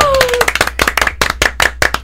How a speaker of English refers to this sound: Wow, we got a golf clap.